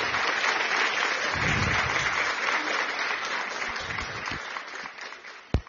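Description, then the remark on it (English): A crowd claps in a steady, dense round of applause for the creative director, carrying on throughout and slowly thinning toward the end before a final sharp clap. “Give her a hand of a round of applause.”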